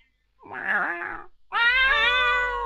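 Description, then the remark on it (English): A cat meows twice: first a short, wavering meow, then a longer, louder, drawn-out yowl with a slight rumble underneath. “Your cat got back to the camp and it meowed at you.”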